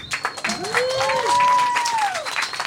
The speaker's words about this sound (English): Please, yes, give a round of applause, my God.